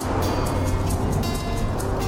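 A lime-green British station wagon drives steadily down a back road, its engine hum and tyre rumble filling the sound continuously, with faint rhythmic swishing bursts repeating every fraction of a second. No one speaks.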